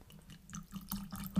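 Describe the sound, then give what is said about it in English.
Chicken Cock whiskey poured over a light amount of ice in a glass: a short run of soft gurgling splashes and trickles, rising and falling over a low steady hum, with no one speaking. “You went light on the ice. We're going to go light on the pores. Tell me when.”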